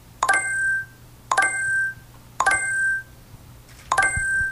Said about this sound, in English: I'm shooting targets. If you wear Glass, this is really annoying because I'm just hijacking some of their sound files so that when you are shooting the targets, it's doing that bling sound.